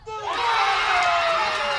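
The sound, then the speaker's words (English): The Memphis home crowd in a stadium erupts into loud, sustained cheering as Memphis wins against the Bulls, a dense wall of roaring voices with high shouts and whoops rising over it, holding steady without a break. “At my own peril, I'm going to turn up the Memphis crowd mic a little.”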